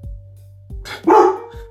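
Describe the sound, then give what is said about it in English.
Dogs, set off by fireworks that night, let out a loud, harsh burst of barking, a quick pair of rough, mid-pitched barks, over a low steady hum, with no one talking. “There's fireworks tonight, so my dogs are going nuts.”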